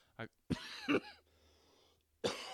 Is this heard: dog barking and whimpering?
no